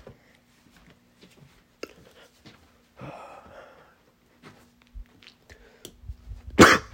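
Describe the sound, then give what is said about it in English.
A few scattered coughs and throat-clearing noises amid quiet, with a longer rasping stretch in the middle and a sharp, loud cough burst right at the end. “Man, the coughs are getting worse.”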